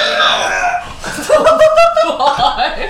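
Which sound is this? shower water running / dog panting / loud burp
loud burp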